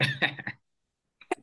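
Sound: sneeze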